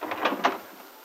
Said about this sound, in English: Later, as Peggy opens the front door at Aunt Mary's.